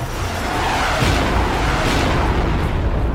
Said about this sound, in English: The sniper had just shot close to our hole when the booms rang out in the distance.